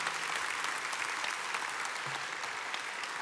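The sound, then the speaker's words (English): A church audience claps together during a morning service, giving the Lord a hand, in a steady, dense wash of applause that holds at an even level for a few seconds, with no voices standing out above it. “So all that said, would you just give the Lord a hand this morning and just thank the Lord for being here?”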